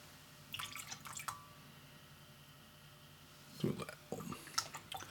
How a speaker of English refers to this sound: Do 1 ounce and like a little splash. So like 1 ounce and a quarter. So I literally just poured 1 ounce in my jigger, poured that in, and then just poured a drizzle directly in the vessel. So whiskey is in, syrup is in.